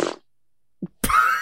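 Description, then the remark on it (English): A brief low rumble, then after a pause a short muffled thump and a louder, buzzy, sustained sputter: a fart coming through a tinny video call connection, with no talking. “farted on Zoom?”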